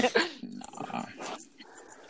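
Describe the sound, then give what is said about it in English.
A person makes a short, rough dog-like growl with their voice, imitating an animal, followed by a moment of breathy, scratchy vocal noise. “Growl. Whatever the fuck that nigga did.”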